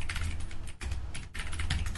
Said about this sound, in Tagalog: Ang sarap naman pakinggan ng mechanical keyboard. Yeah, dude. Sarap, dude. This one is the... napag-usapan na sa BTS ito before. This is the Dragon War Atomos. Yung keyboard na to.